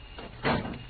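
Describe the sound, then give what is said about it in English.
A door is eased shut with a soft, muffled thud as someone comes in, one brief knock against a faint background hiss, with no voices. “You didn't slam the door when you came in that time.”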